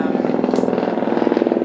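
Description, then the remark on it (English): A helicopter drones steadily overhead in Hollywood, its rotor producing a fast, even chopping pulse over a low engine rumble, sustained at a fairly loud level with no talking. “Plane, sorry. Helicopter. Jesus, I live in Hollywood, guys. Sorry, helicopters everywhere.”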